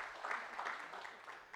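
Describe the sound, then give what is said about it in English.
A soft golf clap in a church gathering after the announcement of a couple's new baby: a few hands patting out quiet, polite applause in a steady, light patter that fades slightly toward the end, with no voices. “Yeah, golf clap.”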